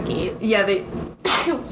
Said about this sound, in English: Bless you. Bless you. Your cute sneezes are caught on tape.